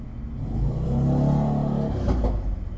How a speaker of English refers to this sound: Motorcycle, I'll wait for it.